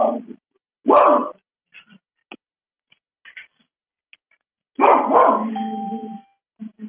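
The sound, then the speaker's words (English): A dog barks several times, a couple of short sharp barks followed by a longer, drawn-out howling bark, fairly loud, with quiet gaps and faint clicks between. “Maybe Alan's talking to his dog.”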